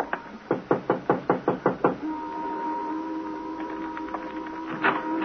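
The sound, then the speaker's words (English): A quick, steady run of about nine firm, evenly spaced knocks on the door of a rundown white single-frame house, followed by a low sustained hum lingering in the background. “Want a knock? Sure.”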